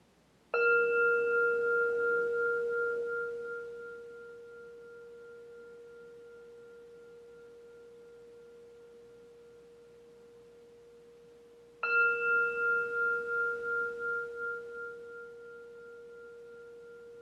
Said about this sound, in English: And maybe we can just have a few breaths together and listen to the bell.